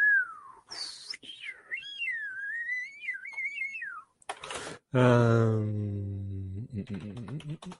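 A person whistles a wandering, pitch-bending tune for about four seconds, clear, followed by a couple of short breathy bursts and then a long, steady low hum.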